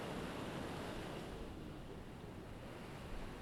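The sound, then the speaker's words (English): Ocean waves wash in at night, a steady, continuous roar of surf with a faint wind-like hiss, heard alone with no voices and no distinct breaks over a few seconds. “primarily at night, when everything goes quiet, nobody's around, my children are asleep, and then I get to go to the place that restores my strength, and mostly by myself in the ocean at night.”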